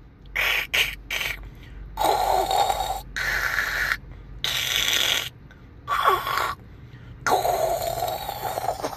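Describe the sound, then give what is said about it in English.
A voice mimics a dial-up modem starting up and connecting, with a series of screechy, hissing bursts and warbling tones separated by short pauses. It is loud, with no other talking. “That was my imitation of a modem starting up.”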